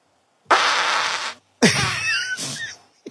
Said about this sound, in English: Farts. Was that me or you? That's you.